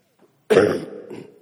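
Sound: allergy cough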